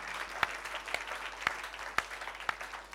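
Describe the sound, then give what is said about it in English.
A church audience applauds as a clap of praise to the Lord, in a dense, steady wash of clapping, with sharper, louder claps landing on a regular beat about twice a second. The whole sound stays fairly soft and no one speaks. “Can you give the Lord a big clap of praise?”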